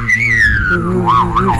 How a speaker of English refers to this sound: Whistling and humming at the same time. I've never seen anyone do that before.